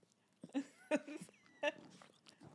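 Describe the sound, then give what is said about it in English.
A puppy named Maggie sniffs and licks at a microphone: soft snuffling broken by three louder, wet, smacking bursts in an uneven rhythm over a couple of seconds. “Maybe we can get her to sniff the mic for you.”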